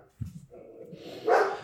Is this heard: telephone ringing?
no